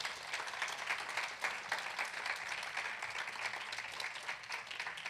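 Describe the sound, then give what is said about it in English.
An audience applauds steadily for several seconds, giving a hand clap for Jesus, a dense wash of many hands clapping at once, sustained and fairly loud with no voices over it. “Y'all ought to give him a hand clap for that right there.”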